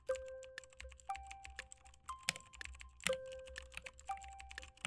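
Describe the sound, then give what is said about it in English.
Rapid, steady clacking of keys on a mechanical keyboard, crisp, with dense irregular keystrokes throughout and a few louder thocks, plus faint tonal beeps in the background; no talking. “ASMR mechanical keyboard.”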